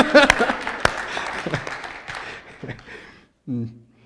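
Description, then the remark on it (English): A crowd breaks into scattered applause, loud at first with sharp overlapping claps, then thinning out and fading over a few seconds before a voice begins speaking. “Somebody clap.”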